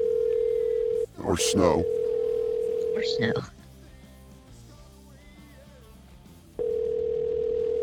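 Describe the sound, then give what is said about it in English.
A steady, loud telephone dial tone hums at one low-mid pitch as someone calls a number they were sent. It is briefly interrupted as a voice speaks over it, cuts out for a few seconds, then resumes unchanged. “I have no idea who I'm calling.”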